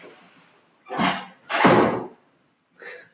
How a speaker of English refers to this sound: Little door slam there.